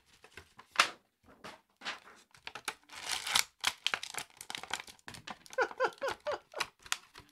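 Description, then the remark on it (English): Crinkling and tearing of plastic and cardboard packaging as an Ahsoka toy is opened, with irregular sharp crackles and rustling bursts that swell louder midway before trailing into quieter scattered crinkles. “For everyone listening, I just opened the Ahsoka.”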